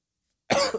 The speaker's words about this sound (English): Hey, man. I got a smoker's cough. That's different than his cough.